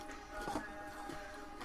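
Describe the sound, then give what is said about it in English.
A dot matrix printer connected to a Commodore computer chatters steadily while printing a picture, its buzzing, mechanical rasp running without pause through the short stretch, with no voices over it. “Oh, okay. On a Commodore. Yeah, on a Dot Matrix printer.”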